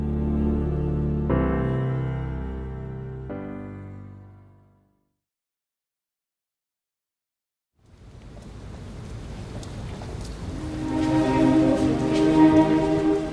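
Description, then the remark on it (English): After a sustained musical chord and a few seconds of silence, a steady, soft hiss of light drizzle fades in and keeps falling on a Thursday evening outside Buckingham Palace, growing slightly fuller toward the end. “On Thursday evening, under soft drizzle, I joined the crowds beginning to gather outside Buckingham Palace.”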